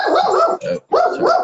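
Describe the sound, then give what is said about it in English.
A dog barks loudly and repeatedly, a quick run of sharp, yappy barks with a brief pause in the middle, and no one speaking. “My dog decided to butt in on the question.”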